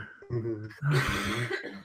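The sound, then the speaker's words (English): A couple of harsh coughs burst out over a short stretch, with some voiced throat sound mixed in, fairly loud against a quiet background. “Apologies, you may hear some coughing.”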